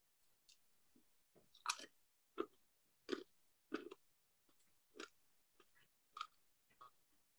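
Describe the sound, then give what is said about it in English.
Someone chews a mouthful of food up close, with wet smacking and crunching bursts that come in an uneven rhythm, roughly one bite every half second or so, and no talking. “I already got a mouthful. Chew them up and swallow them, dummy.”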